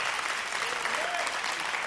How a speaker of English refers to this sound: Why don't you go ahead and give God a clap offering of praise? Yes!